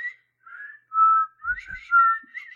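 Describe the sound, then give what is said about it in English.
A person whistles the theme tune from the film Kill Bill, the clear pure tones gliding between notes in short phrases, with a few soft low thumps partway through and no talking. “Whistling. Yes, whistling. This is good audio.”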